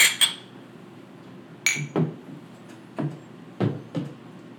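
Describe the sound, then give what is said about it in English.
Glasses of stout beer clink together in a toast, two bright ringing chimes, followed by several duller knocks like glasses being set down on a table, with no talking. “Well, let's go ahead and get a fucking cheers, boys.”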